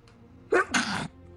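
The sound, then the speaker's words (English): A single loud sneeze with a sharp intake followed by a forceful breathy burst lasting about half a second, with no talking. “Bless you. Coronavirus.”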